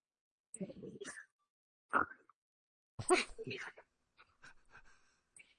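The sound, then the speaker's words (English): A man's voice imitates another man's snoring, the weird noise that man makes while snoring in bed at night: a few rough, breathy snorts and gasps in irregular bursts, the first three loud and the last ones softer and scattered. “His snore was like...”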